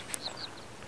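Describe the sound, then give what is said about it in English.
A few faint, high bird chirps sound in quick succession against a quiet outdoor background, with a soft click just before them and no one talking. “Just wanted you to hear the sweet songs of the birds.”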